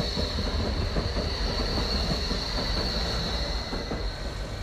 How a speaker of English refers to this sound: Hurry now, it's nearly sunset and time to take the number 12 tram to meet one of the guardians of the light, art historian Liz Stone.